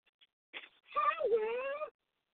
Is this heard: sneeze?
no